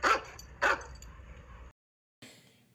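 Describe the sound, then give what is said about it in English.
A small dog gives two sharp, high yips in quick succession, then after a short silence lets out a softer, trailing bark. The yips are fairly loud, with no talking. “She's such a good girl. I love the puppies.”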